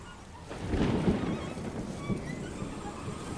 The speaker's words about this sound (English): Ah, and here it is. Here's that rain.